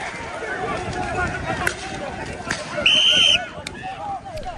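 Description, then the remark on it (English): A single sharp, shrill whistle blast cuts through about half a second of dense, noisy street-crowd commotion, with many voices clamoring and shuffling all around. “Stop or I'll blow my whistle.”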